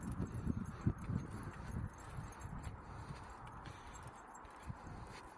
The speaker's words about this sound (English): That's the phone jangling against my Altoids there.